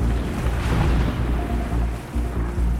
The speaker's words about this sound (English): It's a few hours before dawn on Sicily's southern coast. The Italian island sits between the toe of the boot on Italy's mainland and the northeast tip of Africa. There's no moon tonight, and on the Mediterranean Sea, a storm is raging.